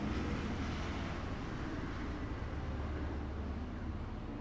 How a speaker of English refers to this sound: Wow, there's a plane overhead. This is going to be really terrible. Please hold.